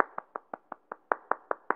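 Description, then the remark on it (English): A short run of about nine light, quick hand claps in a steady, even rhythm, each one crisp and of similar loudness, with no voices, like someone getting up off the couch to clap when their sports team has just won the championship. “But when their sports team has just won the championship, so you now do you get up off the couch and give a little quick clap?”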